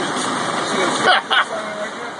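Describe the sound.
A steady engine hum from a car driving past the burning state fair stove, struck by lightning on August 13, 2011, with a couple of brief louder bursts midway and faint muffled voices in the mix.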